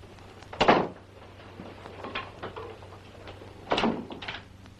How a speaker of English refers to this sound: You locked my door. I did, yes.